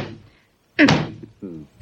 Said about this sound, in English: Oh, sure. I bang this against the wall like this.